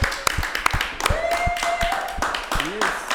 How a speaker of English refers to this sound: Ladies and gentlemen. Clap it up, man.